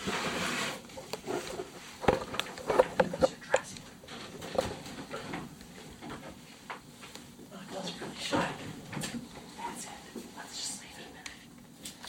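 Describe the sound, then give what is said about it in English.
A door is shut by people leaving a digital recorder running alone in a room, with a brief cluster of latch clicks and a soft knock early on, followed by quiet room tone with faint, muffled voices and shuffling in the background. “So we're going to shut the door and leave you alone.”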